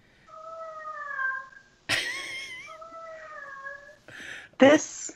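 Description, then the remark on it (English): A cat howls in long, drawn-out, wavering meows, two sustained wails broken up by short noisy bursts, sounding mournful. “That cat is sad. This is the howling.”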